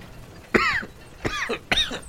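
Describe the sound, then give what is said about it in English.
Three harsh, wet coughs in quick succession from an older man doubling over, each a sudden loud burst with a raspy, hacking tail, with no talking. “He looked like he was about to say something, and he just like doubles over, coughing and hacking.”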